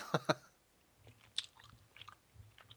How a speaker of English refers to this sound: Can you hear me? Is it that loud when I chew, or...? Because the mic's right next to my mouth. That's... Just keep chewing if you like. I will.